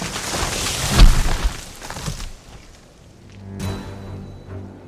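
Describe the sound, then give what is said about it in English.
A sudden loud crack as a lightning bolt strikes an old oak tree and splits it in two, trailing off in crackling and splintering, then a deep, heavy thud a couple of seconds later as the two halves fall to the earth. No one speaks. “As the Gatlins tore off, a lightning bolt came down and struck the oak tree, slicing it into two. The two halves of the old tree fell dead to the earth with a thud.”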